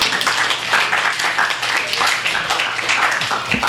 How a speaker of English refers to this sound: So let's bring these guys up here with a big round of applause.